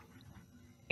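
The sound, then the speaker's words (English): A single short, sharp dog bark bursts out near the end, over a low, steady rumble of background noise. “Oh, dog.”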